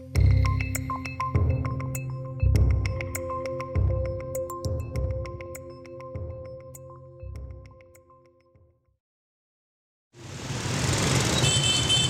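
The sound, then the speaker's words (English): A musical passage with steady tones and regular beats ends, and after a short silence a loud, dense roar of street traffic of motorbikes and SUVs in Hanoi rises for the last couple of seconds. “A tide of motorbikes and SUVs flood the streets every day.”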